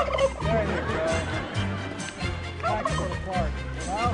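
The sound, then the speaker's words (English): A turkey gobbles in repeated rapid, warbling bursts, loud, with a murmur of voices and background noise underneath throughout. “This turkey represents America's 45 million turkeys who will begin making their irreplaceable contribution to our Thanksgiving celebration.”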